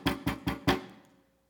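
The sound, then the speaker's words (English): Four firm knocks on a door at 4 a.m., in a steady, fairly quick rhythm, each a solid thud with a short ringing decay, the last one trailing off into silence. “Another knock.”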